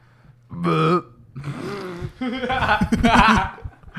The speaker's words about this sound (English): No, I burped. I had to let it out.